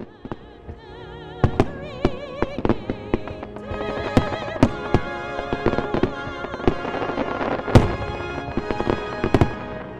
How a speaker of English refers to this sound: So the big draw on Saturdays at Sailfest is the fireworks.